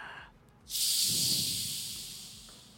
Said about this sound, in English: That was our Canadian guest farting into the mic.